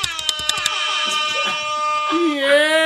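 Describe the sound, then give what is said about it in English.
A loud, brassy spring break bonanza air horn, sounded to welcome a special guest, goes off in a quick string of short stuttering blasts, then holds a long sustained blare that bends and wavers in pitch toward the end. “I like that I'm a special enough guest to warrant the the air horn.”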